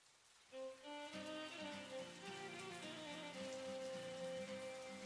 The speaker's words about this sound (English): He lit a cigarette and stared at the window. He noticed outside it was raining again.